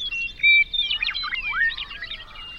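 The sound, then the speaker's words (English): Birdsong heard through a steep filter around 2.5 kilohertz, applied to a mix that also held people talking and highway noise, leaving only thin, bright whistles and quick rising and falling chirps tumbling over one another for a couple of seconds, with no other sounds. “Birdsong makes it through.”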